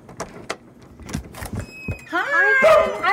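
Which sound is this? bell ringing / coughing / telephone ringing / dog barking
dog barking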